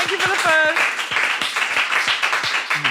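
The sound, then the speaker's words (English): An audience breaks into a steady round of applause for Rose Matafeo, dense clapping filling the whole stretch, with a few high cheering voices rising over it at the start. “Round of applause for Rose Matafeo, everybody.”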